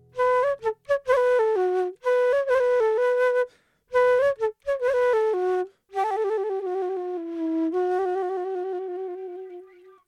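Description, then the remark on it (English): A bright flute plays a quick, bouncy melody of short notes, then slows into longer held tones that fade at the end. It's clear, with no voices. “Rusty the Robin played the flute.”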